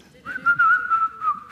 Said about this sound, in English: And she would, and all her little friends, and she would say, "Now let us whistle while we..." You remember?